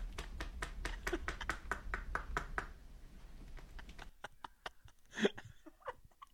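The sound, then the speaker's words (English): A person's buttocks clapping together: a quick, steady run of about a dozen soft, fleshy slaps, followed by a pause, then a few scattered fainter taps and one sharper smack. “Yeah, but I just wanted to show you guys I can make my yeeks clap this way.”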